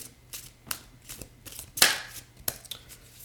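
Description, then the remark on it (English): Tarot cards being shuffled, a rapid series of crisp papery slaps and riffles with one louder flurry in the middle, no voices. “We're shuffling.”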